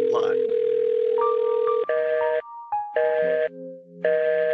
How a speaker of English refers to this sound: What's that? Do I hear a phone? Do I hear a phone ringing? I think you do.